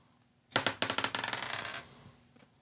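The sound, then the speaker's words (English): Dice rattle and tumble across a hard tabletop, rolled for a constitution saving throw with disadvantage, in a quick burst of bright clicks that slows and fades after about a second, with no voices during the roll. “I find a roll a constitution saving throw for me there.”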